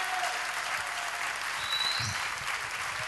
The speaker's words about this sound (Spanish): Fuerte el aplauso al Señor en esta mañana.